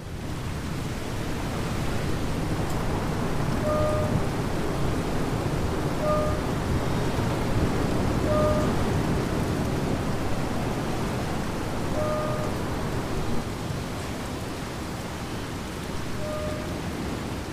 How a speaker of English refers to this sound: The sea which carried them obediently before is now a beast eager to devour. Dark waters paw the ship and gales scour the deck, everything thrown violently off kilter into chaos.